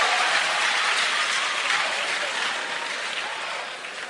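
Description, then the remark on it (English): A crowd claps steadily for about four seconds, a dense, crackling wash of many hands with no voices over it, holding an even loudness before easing off slightly at the end. “Clap for him.”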